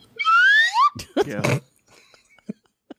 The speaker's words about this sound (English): Let me bring up the slide whistle.